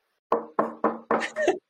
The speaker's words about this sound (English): Are you in a clear chair right now? Yes. It's clear. Will you like knock on it? Can I?